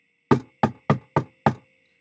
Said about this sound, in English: Okay, let me knock on his door.